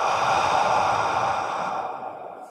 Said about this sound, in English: Exhale and hold. Inhale one more time and hold. Exhale